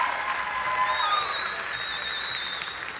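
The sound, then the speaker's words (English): A crowd applauding the children and leaders of VBS 2022 steadily, many hands clapping in a dense, continuous wash of sound at an even level throughout, with a faint high tone running over it. “Why don't you give these children and these leaders a round of applause?”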